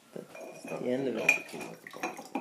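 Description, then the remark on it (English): Dishes and cutlery clink and clatter together as they are washed at a sink, a steady jumble of sharp metallic and ceramic knocks with a few brighter pings, over a low background murmur. “You clean dishes.”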